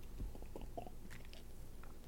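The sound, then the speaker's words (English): Someone drinks water: a handful of soft, wet gulping and swallowing sounds in uneven succession, fairly quiet, with no talking. “Water break.”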